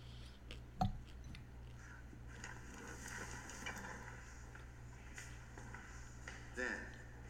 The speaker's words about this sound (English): Is my popcorn chewing that loud? If it is, I'm really sorry.